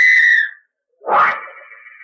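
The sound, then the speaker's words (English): A traffic cop's whistle blows on a street: two sharp, shrill blasts, a steady half-second toot, a brief pause, then a harsher, breathier blast that trails off. Loud, with no talking. “When the cop whistles, cross the street without looking back.”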